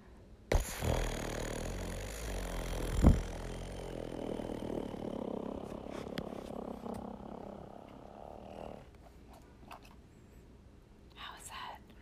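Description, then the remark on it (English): A voice imitates a motorboat engine with a sustained, sputtering low rumble and fluttering lips, starting abruptly with a sharp burst, droning steadily for about eight seconds, then trailing off into breathy whispers. “Consequently, I can also do a motorboat sound.”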